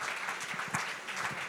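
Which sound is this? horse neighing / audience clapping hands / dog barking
audience clapping hands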